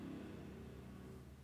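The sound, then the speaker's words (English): A faint, steady engine drone with a low, buzzing hum, like a motorcycle revving right outside, muffled, with no voices. “Sounds like a motorcycle revving right outside.”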